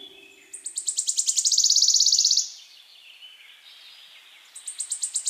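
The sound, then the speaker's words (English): A warbler sings a fast, bright trill of high repeated notes that swells loudly and then fades, and a second quicker burst starts up near the end, with no voices. “That's right, a warbler is a bird. A small active insect eater commonly found in gardens, woodlands, and marshes.”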